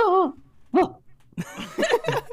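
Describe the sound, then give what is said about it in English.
A human voice imitates a dog barking: a drawn-out yelp, a short sharp bark, then a final burst of bark-like sounds mixed with laughter, fairly loud. “It's like when a dog barks, then it does that last bark.”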